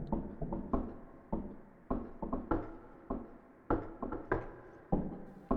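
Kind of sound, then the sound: impact, knocking on a door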